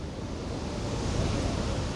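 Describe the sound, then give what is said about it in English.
A steady, full-bodied wash of sea surf rolls on without pause, a broad rushing hiss that swells slightly toward the middle, like waves breaking on a shore. “It's the sea.”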